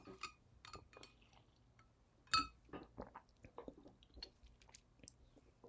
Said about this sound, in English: Sorry, I had to get a gulp of that in.